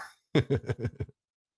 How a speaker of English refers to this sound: in case you guys haven't guessed, I am doing this out of my house. So as I assume most pod beaners are, and occasionally the dogs are going to bark at shit. They're adorable. I can't help it. I'm going to keep them.